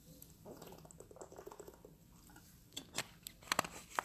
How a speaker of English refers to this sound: I got to take another drink of water. My voice is not helping me today.